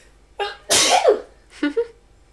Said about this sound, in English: I would say, hold on, I'm about to sneeze.